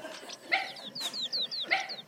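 Two sharp, high-pitched yaps about a second apart from a dog scaring a skunk that has got into a hearse, mixed with quick descending squeaky chirps, fairly faint and thin, with no talking.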